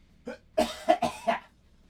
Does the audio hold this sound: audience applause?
no